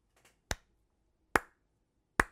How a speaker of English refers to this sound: The slow clap. This is a nice little slow clap for Mike Elias